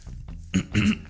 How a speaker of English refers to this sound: Every time I try to clear my throat, it triggers my hiccup.